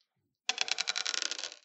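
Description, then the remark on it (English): Small dice rattle and clatter across a hard tabletop in a quick burst of tiny clicks, fairly quiet, settling after about a second with no voices. “These dice are so small.”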